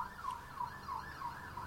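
An emergency vehicle siren wails in a fast, repeating up-and-down sweep, heard outside the Rex Factor Studios with a low traffic rumble underneath and no one speaking.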